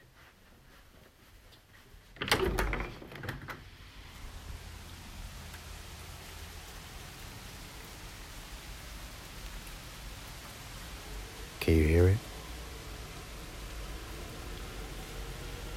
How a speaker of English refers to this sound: That's the Dutch rain paying us another visit. Now, Unfortunately, I can't check whether you actually can hear it or not, but I hope you do.